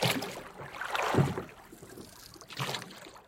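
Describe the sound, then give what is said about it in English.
Three flat-bottomed boats push off through water around noon, with broad splashing and sloshing swells, a couple of surges rising and fading over a few seconds, with no voices. “Around noon, the boats push off.”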